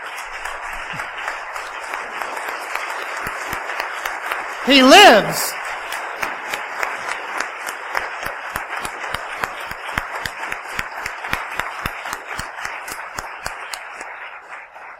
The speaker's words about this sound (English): Let's give our applause to the Lord.